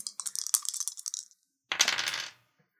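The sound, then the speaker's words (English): Two six-sided dice clatter in a quick run of sharp little clicks, then after a brief pause a louder, denser tumble rattles across a hard surface and settles. No one speaks. “I don't have dice, so would you mind rolling?”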